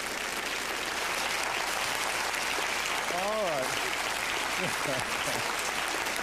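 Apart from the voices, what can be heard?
audience clapping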